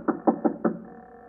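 knocking on a door

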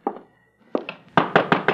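knocking on a door

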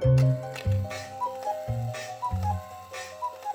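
cuckoo clock ticking

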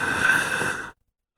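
deep heavy breathing

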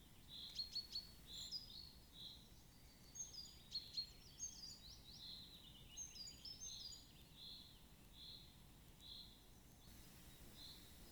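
birdsong

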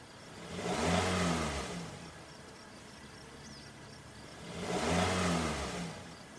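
car engine revving

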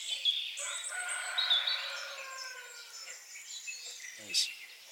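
rooster crowing

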